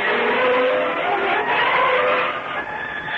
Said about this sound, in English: I dropped Cal off at his place and turned my car's nose in the direction of Cove City again